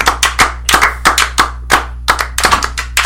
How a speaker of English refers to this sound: It was a good 20th episode. Congratulations. Happy 20th. Let's promo. Let's clap for us.